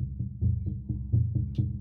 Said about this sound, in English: And I was always scared I was going to get stuck in the board game. Especially when you hear the drums.